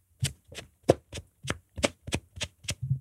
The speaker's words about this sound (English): It has been so long since I've seen anyone do the like armpit fart.